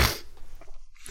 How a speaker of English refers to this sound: You gotta sneeze. Bless your soul.